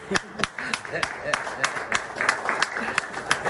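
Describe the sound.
An audience claps steadily in quick, uneven bursts while voices cheer and call out over the top, a lively crowd sound at moderate volume.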